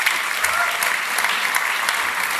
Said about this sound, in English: So a big round of applause for our volunteers, actually.